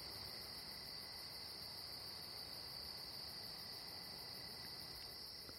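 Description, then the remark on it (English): A steady chorus of night insects, likely crickets, including one called the 'snore whistle', trilling continuously in a high, shrill pitch with a rapid pulsing texture, fairly quiet and unbroken throughout, with no voices. “You know, old snore whistle's still going pretty strong. I don't know, you should be able to still hear that.”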